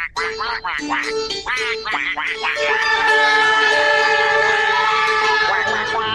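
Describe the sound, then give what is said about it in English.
A quick series of loud, nasal duck quacks sounds for a couple of seconds as an introduction, then gives way to a dense, sustained wash of blaring horn-like tones. “This is my favorite. Quack, quack, quack, quack.”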